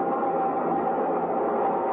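A steady, loud roar of a subway train in a station, with a constant high metallic whine riding over the rumble for the whole stretch and no voices.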